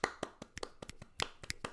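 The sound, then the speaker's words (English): A quick, uneven run of about a dozen sharp hand claps and finger snaps, some landing in close pairs, crisp and fairly loud with no voices. “Claps, snaps, claps, snaps, claps, snaps, snaps, claps.”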